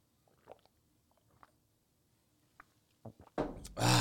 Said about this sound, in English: And let's take a big sip of it.